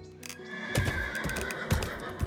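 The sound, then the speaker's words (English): Two hard-ridden horses whinny loudly, a sustained high neigh over scattered heavy hoof clops and snorting as they approach and pull up to a house, with no voices. “When the horses finally pulled up to the house, I could see they'd been ridden pretty hard.”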